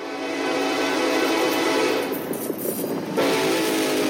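A loud, sustained train horn blares for several seconds over the heavy rumble of a passing train, its tone wavering slightly before swelling again near the end.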